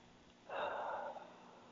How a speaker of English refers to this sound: What a deep breath we need to take right now. And by the way, everybody, do deeply breathe. You know, I can do that on this program. This is the time for us to breathe in and hold it and release slowly.